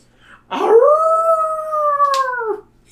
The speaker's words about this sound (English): This time the howl is so loud that the ground shakes.